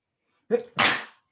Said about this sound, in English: 1 second. I'm going to sneeze.